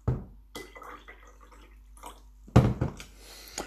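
Fresh water pours from a jug into a glass in short splashing bursts, with a louder, fuller gush near the end, and with no voices.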